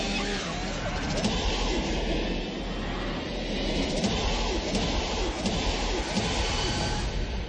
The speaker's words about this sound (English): It there's, sounds like a plane taking off. Yeah, there's which is what the Transformers trailer sounded like. It's a lot.